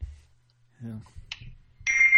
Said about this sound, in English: can you hear that loud beep? Yeah, it's not real annoying. So. It's kind of annoying for you.